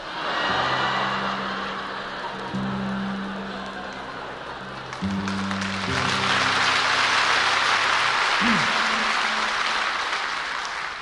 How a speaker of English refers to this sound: Then you will hear the full-scale battle with the horses and guns.